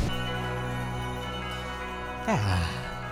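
A Christmas song's closing moments: a loud sustained chord rings out, then a single note bends sharply downward and fades, with no voices.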